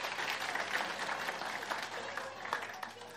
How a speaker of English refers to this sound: Well done. Do you want to give him a round of applause? Thanks, guys.